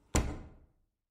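An office door bangs open with one sharp, solid thump, its low resonance dying away within about half a second. No voices, just the lone impact.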